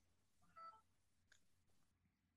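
A few faint, short electronic beeps from a phone keypad as the phone is being turned off, spaced irregularly over a couple of seconds against a quiet, hushed background with no one speaking.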